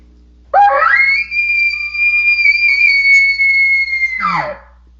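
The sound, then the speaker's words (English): A person imitates an elk's location bugle, a call used to get elk to respond: a rising low grunt that climbs into a long, loud, sustained high whistle lasting several seconds, then breaks down into a falling guttural end. “a mountain or just anywhere that looks like a good elk spot and you don't hear a bugle, you're going to want to spit out that location bugle just to see if you can get some elk to respond.”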